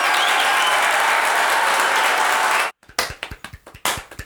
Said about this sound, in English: Hold for applause.